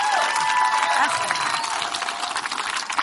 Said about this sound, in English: Okay, so let's just say, yeah, stand up. Let's take a moment. Oh my God. Let's give her a W round of applause, folks.